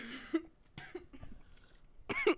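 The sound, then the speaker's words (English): A few loud coughs into a microphone in quick bursts, the first and last strongest, with quieter throaty sounds between them, from a woman hosting a seafood mukbang eating video with shrimp and crab. “Please cough into the mic. Please cough more into the mic.”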